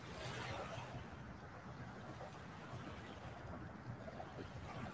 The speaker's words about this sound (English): We could probably just do a show and listen to the waves. They're so relaxing.